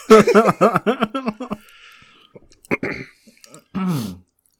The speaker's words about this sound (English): Both men start swallowing the wet food in their wet mouth.